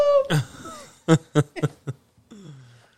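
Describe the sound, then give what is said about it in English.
A short fit of coughing: about five harsh, breathy bursts in an uneven rhythm, fairly loud, followed by a softer, wheezy, throaty exhale as it trails off. “Sorry, I just have a cough roll past.”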